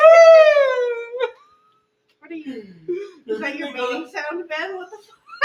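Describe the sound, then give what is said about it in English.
A man's voice lets out a loud, high, squealing whistle-like cry imitating a dolphin call, lasting about a second, then after a brief pause people talk. “Is that your mating sound”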